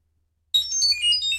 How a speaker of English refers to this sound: You know, I've got one of these really popular alien songs on my phone here. Alien playlist? Yeah, yeah. Let me let you hear this guy. It's a banger.